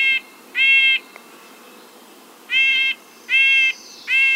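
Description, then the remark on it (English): A bird, probably a nuthatch, gives five short, nasal, horn-like calls: two close together, a pause, then three more in a steady series. The calls are clear, with no voices. “The Cherokee name for nuthatch is deaf, possibly because of the bird's disregard for the presence of humans.”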